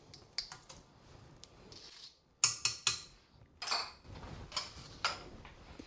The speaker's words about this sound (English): First, the pineapple, which hopefully now is mostly out of juice. I'm giving it one more good squish against the back of the mesh sieve thing. And that goes in.